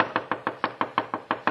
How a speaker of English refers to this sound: If I'd had any sense, I'd have given up right then with the bellboy pounding on the door, with that girl on the phone who could send me to the chair with a word.